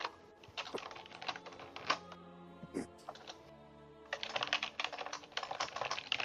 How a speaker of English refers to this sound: I love your clicky keyboard. It's beautiful.